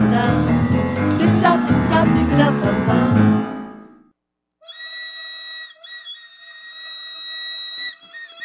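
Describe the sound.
A homemade kazoo and slide whistle hybrid contraption, quickly put together, gives a loud, dense buzzing burst, falls silent briefly, then sounds a thin, steady whistling tone with small pitch wobbles and dips for several seconds.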